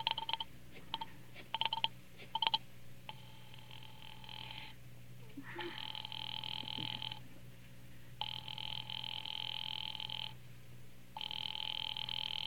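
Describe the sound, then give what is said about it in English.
A few quick clicks and tone blips give way to a telephone ringing on the line as a call is put through to the police department: long, steady ring bursts of about two seconds repeating with short gaps, thin and filtered, over a low hum. “Ringing the police department.”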